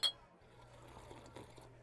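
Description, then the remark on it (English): Beer glasses clink in a toast at a bar called Green Door, once at the very start with a short bright ring, then fade into a low steady hum and faint background murmur. “I sit at the bar and order a couple of beers.”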